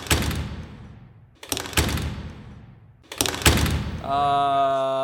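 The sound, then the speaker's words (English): Three heavy cafeteria doors slam shut one after another, each a loud booming bang that rumbles away, followed by a steady ringing tone at the end. No one speaks. “And you hear some loud slams as all of the doors to the cafeteria slam shut.”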